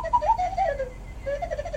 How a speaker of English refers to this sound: If you can find it, will you please put that owl sound here?